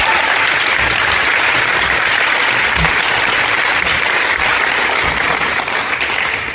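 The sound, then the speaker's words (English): A crowd applauds a speaker who is about to be introduced, a dense, even wash of many hands clapping at full volume that holds without pause for several seconds and only begins to thin slightly at the very end. “So I'm just going to let you give him a huge round of applause before introducing him to him.”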